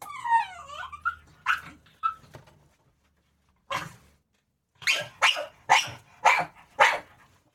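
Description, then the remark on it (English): A dog named Ruby whines and squeaks with high, wavering yelps, then lets out a string of sharp barks, five in quick rhythm near the end, fairly loud with no talking. “I was interrupted by the dog.”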